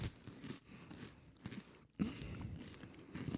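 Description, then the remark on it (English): Crackly crunching of a cheese and onion crisp being bitten and chewed, in uneven bursts with a brief pause before a louder crunch, then steady munching. “You take one little crunch and not bad.”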